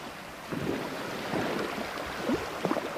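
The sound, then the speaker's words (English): Sea waves wash steadily against the shore in a continuous broad rush, swelling and easing in gentle surges with a breezy, open-air quality and a few brief higher-pitched accents near the end. “After traveling for many days, they reached the shores of the sea.”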